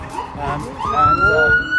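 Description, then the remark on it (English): An ambulance siren wails, its pitch sweeping upward and holding in a steady rising tone, clear over a background of street noise and a talking voice. “There comes an ambulance.”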